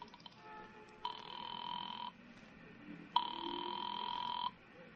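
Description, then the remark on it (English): A telephone rings on the other end of a line after a nickel is dropped into the phone at a filling station and a number is dialed: two long steady buzzing rings separated by a pause, thin and filtered as if heard through a handset, with no one speaking. “instead dropped the nickel in and dialed Republic 2809 again, just on a hunch”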